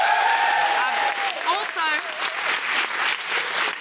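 An audience claps steadily and loudly for nearly four seconds, a dense wash of hands with a few high, wavering whoops and cheers rising above it early on.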